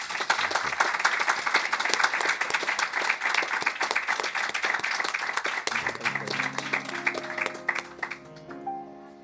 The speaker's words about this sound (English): But in the meantime, let's give a big round of applause to Robert Bathurst.